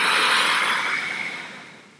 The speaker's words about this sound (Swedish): Vi andas in genom näsan, fyller upp, expanderar bröstkorgen, magen med luft. Och vi släpper långsamt ut genom munnen. Tömmer ut hela andetaget. En gång till, vi andas in.